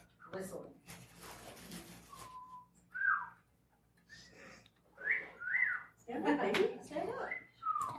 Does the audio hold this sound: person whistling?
yes